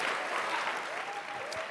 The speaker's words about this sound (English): And I want us to actually give a second hand clap to our Board of Regents. We normally don't have them on campus, but they're on campus today.